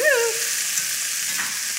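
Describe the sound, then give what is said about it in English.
Food with a crust sizzles steadily in a hot pan as it is flipped, a constant bright crackling hiss, with a brief squeaky gliding tone right at the start. “They got a nice little crust on them. I'm going to flip them a little.”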